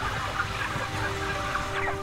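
A dense, continuous wash of clucking from tens of thousands of chickens raised for food, crammed together in a shed, many overlapping calls at steady loudness with a low mechanical hum underneath.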